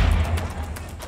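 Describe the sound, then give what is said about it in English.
Rifle shots, a few rounds sent down range in quick succession, about four sharp cracks spaced unevenly over a heavy low rumble, with no voices. “Sit in and take a few rounds and send down range.”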